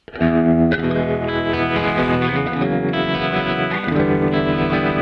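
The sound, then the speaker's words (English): Electric guitar chords played on a vintage preset with a tremolo effect placed behind a spring reverb ring out with a wobbling tremolo pulse and a splashy spring reverb tail, played steadily and fairly loud with no voices over it. “on the vintage one, I prepared a tremolo effect.”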